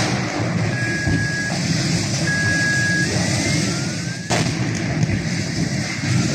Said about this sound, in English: Yeah. Those are not gunshots. No. Those are the battery cells combusting. Yeah.